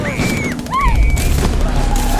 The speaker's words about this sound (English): While Gordon is walking with his wife and daughter, Barbara, they are suddenly surrounded by Falcone and his men. Bullets begin flying, and Barbara is kidnapped.